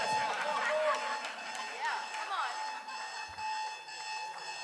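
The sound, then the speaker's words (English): A steady, shrill alarm rings continuously for several seconds at moderate loudness, with a mix of excited voices and crowd noise swirling over it. “And I believe that, guys, give me an alarm.”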